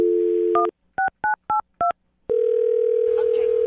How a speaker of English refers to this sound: Well, I'll dial her phone number right now, get her on the phone, and find out why she's not calling you back.